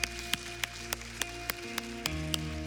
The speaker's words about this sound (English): Come on, let's give God a round of applause today. Thank you, Lord.